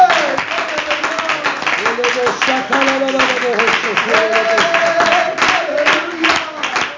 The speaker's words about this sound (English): Oh, let's clap our hands to the Lord and give Him praise.